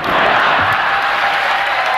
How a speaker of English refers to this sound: Stock answer. Well, it's a good answer. It gets a nice applause.